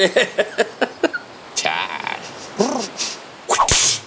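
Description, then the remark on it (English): A voice imitates the whip cracks of Bulbasaur's vine whips from Pokemon: a quick run of sharp clicking taps, then several loud, hissing snaps and swishes with squeaky vocal swoops in between, fairly loud. “Bulbasaur's vine whips.”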